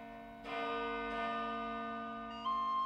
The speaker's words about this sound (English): Some of this evidence was used to produce a replica of the great iron bell that was used over 1,000 years ago to call the monks to prayer at intervals throughout their working day.